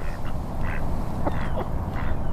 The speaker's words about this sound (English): I'll come and see our little ducks. Watch your feet here, it's a bit slippy. Yeah, lots of mallards.